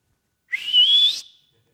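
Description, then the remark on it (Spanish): A single sharp human whistle, fairly loud, sliding upward in pitch over about three-quarters of a second with a breathy edge, then stopping abruptly into silence; a father's distinctive whistle to his child stepping up to the free-throw line at a basketball game. “Tenía un chiflido de que yo inmediatamente lo reconocía.”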